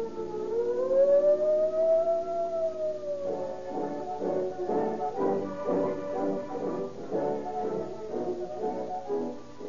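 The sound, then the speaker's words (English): A shrill toy junior police siren whistle, part of a junior detective outfit, rises and falls in a long wail, then breaks into rapid, warbling pulses. It sounds loud, with no voices. “And that siren shriek came from the official junior police siren whistle.”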